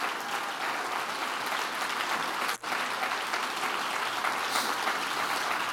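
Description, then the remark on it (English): A church audience on its feet claps steadily and loudly to thank God, in a dense, continuous wash of applause, with a brief dip in the middle before the clapping resumes at full strength. “If you believe it, jump to your feet and clap your hands and thank God for His blessing in your life.”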